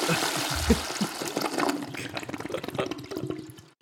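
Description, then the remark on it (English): A toilet flushes with a loud, rushing gurgle of water that swirls steadily before draining away and fading out at the end, while voices talk over it. “But it gets the flush.”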